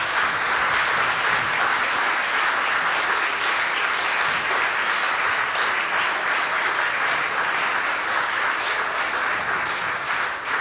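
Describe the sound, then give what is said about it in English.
A crowd applauds steadily and loudly for about ten seconds, a dense wash of many hands clapping at once with no pauses or voices breaking through; a church audience applauding its newest baptized members and confirmed Christians. “Uproarious applause.”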